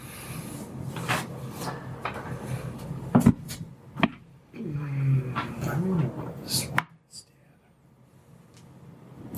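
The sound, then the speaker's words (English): New dice rattle and clatter across a table in a few quick bursts of sharp clicks, rolled for a perception check and coming up a natural 20, with people talking over and between the rolls. “Your new dice are really not helping.”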